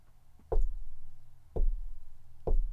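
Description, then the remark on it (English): Three loud, hollow knocks on a front door, evenly spaced about a second apart, each a deep thud with a short boomy ring, with no voices around them. “What's that knocking? Do you hear it?”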